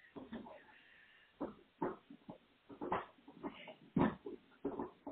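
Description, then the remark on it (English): Toby the dog gnawing on a bare deer antler: irregular bursts of scraping, crunching and clicking, with short pauses and snuffly noises between bites, moderately loud throughout. “That's Toby chewing on a deer antler.”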